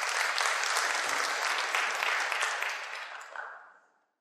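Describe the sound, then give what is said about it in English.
A crowd claps steadily in a dense, even wash of applause that holds for about three seconds, then thins and fades out, with no voices over it. “Give yourselves a round of applause, folks.”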